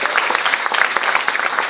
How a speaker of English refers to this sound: We have a very famous man here tonight. Beside myself, we have Mr. Georgie Rose from the Melbourne Storm Rugby League football team. Ladies and gentlemen, give a big round of applause. Yes! Georgie!